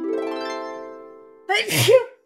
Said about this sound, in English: I sneezed. Can you close early?